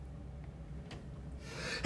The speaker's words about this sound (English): But, oh man. I gotta sneeze.